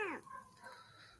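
A single short cat meow, high and sliding downward in pitch, lasting a fraction of a second before fading into faint, quiet background sound.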